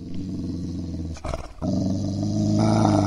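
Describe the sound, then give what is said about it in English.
A big dog growls deep and loud, a continuous rumbling snarl that breaks off briefly in the middle, then resumes even stronger. No one speaks. “They got that big dog.”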